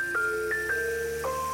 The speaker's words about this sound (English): That wasn't me. That was... Ice cream truck! Quick, let's catch it before it drives away.